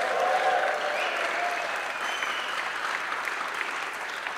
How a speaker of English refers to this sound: To prove that this is live at MixCon, I'm going to need some help from our audience. Can you guys give us a round of applause to show we're live here at MixCon?